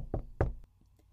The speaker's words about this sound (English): When she took a calming breath, drawing some of the magic fluttering around her just in case, she knocked on the door.